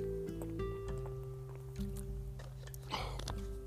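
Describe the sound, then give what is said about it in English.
Soft liquid sounds of someone drinking water, with faint sloshing and a brief louder gulp near the end, over a steady low electrical hum. “Let me get some water.”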